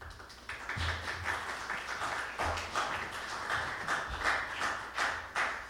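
An audience applauds steadily for several seconds as a new preacher is welcomed up to preach his first sermon, a dense patter of many hands clapping at once with no voices, holding a fairly even loudness throughout.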